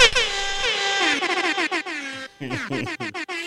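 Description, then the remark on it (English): A loud, blaring air horn sound effect with strong harmonic tones, sustained at first, then breaking into a rapid series of short choppy blasts that end in a sputtering flourish. “Dad lung needs a super air horn.”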